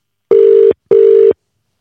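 A phone ringback tone plays on an outgoing call: two steady, mid-pitched electronic buzzes in quick succession, each under half a second, followed by silence. No one speaks.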